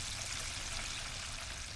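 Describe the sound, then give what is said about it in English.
Vinegar and water pour steadily over chicken to soak it before battering and frying, in an unbroken splashing hiss that holds at an even level for about two seconds, with no voices. “we soak the chicken in vinegar and water, dip it in sour cream and cornstarch batter, and fry it in a pot of lard.”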